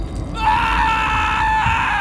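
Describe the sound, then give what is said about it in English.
A man screams in agony as a creature eats his torn-off arm, one sustained, strained cry that starts abruptly after a brief pause and holds loud for nearly two seconds over a low rumbling background. “The creature backed away, eating while I flopped around, spraying blood and screaming at the top of my lungs.”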